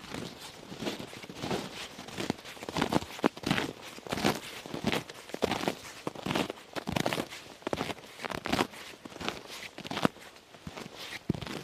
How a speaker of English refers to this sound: But of course, snow and ice don't make sound. I have to make sounds with the snow and ice.